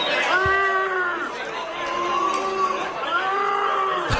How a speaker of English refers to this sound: There's some ravenous booing going on in there. Absolute disgrace. Couple of blokes having a go at Uzi.